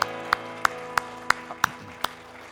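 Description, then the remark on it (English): An audience claps for the Lord in a steady, even rhythm, about eight crisp claps in quick succession over a low, sustained tonal hum, with no talking. “Would you give the Lord a clap and just thank him tonight?”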